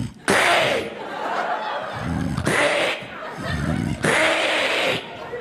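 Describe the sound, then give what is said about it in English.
A voice imitates a wife's loud snore: three harsh, rasping, hissy blasts, each followed by a lower, gurgling rumble, repeating in a steady rhythm. “It's a very, very deceiving snore.”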